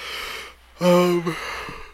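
A single yawn: a breathy intake of air swells into a drawn-out, voiced groan lasting about half a second, then trails off into soft breath. No talking.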